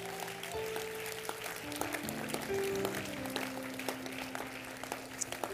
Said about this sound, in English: All of you out here, give your husbands, give your dads, your grandpas, your uncles, give them all a hand. Children and ladies out there, give them a hand.